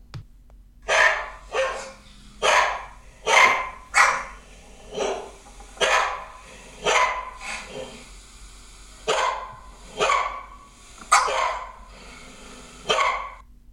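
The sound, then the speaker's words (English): Several pet dogs, including one named Lizzie, bark together in a steady run of about a dozen loud, sharp barks, with brief pauses between each burst. “And this is them barking the other day, probably at the postman or something.”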